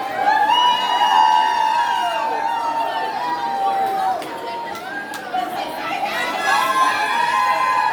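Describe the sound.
A big, excited crowd fills the air with overlapping cheers, shouts and chatter as people walk underneath the train station into the Magic Kingdom park, sustained and fairly loud throughout, with high-pitched voices rising above the general roar.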